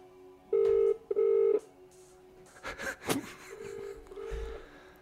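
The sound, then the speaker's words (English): A telephone line tone sounds in two loud, steady bursts as a call is placed to a friend's father, followed by clicks and rustling handset noise, then a fainter, longer tone. No one speaks. “I want to call Mark's dad, tell him I've got finals fever.”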